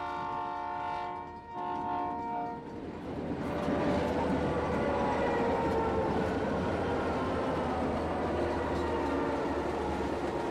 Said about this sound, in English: I had this iPod, then I hung my earphones like with the iPod because they have like this tiny mic, and recorded like some train sounds.